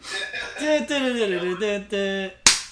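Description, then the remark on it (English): A wavering, drawn-out vocal sound, as if a voice is mimicking a video game noise, cuts off into one sharp, loud slapping pop that rings briefly and fades: the game's slap sound when a balloon pops as the player dies. “Yeah, and then like at the end of when you die, like they made that slapping noise when the balloon pops, and it's like slap yourself in the face like every time.”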